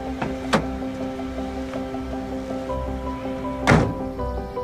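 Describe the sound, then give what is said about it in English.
A door opens with a couple of dull thunks, one early and a louder one near the end, over a steady low hum and no voices. “Ooh, sweetie, open the door. Get the door. Open the door, sweetie.”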